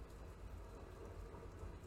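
A train rolls past outside a window, a steady, low rumbling roar that holds evenly throughout with a faint hiss on top and no voices.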